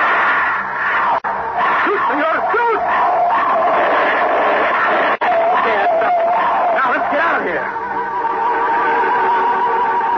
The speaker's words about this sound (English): We turned to head to the surface, and just as we did so, I saw something coming up the tunnel toward us. Something that was a pallid white shape in the light of my flashlight. Something running on all fours and howling hungrily.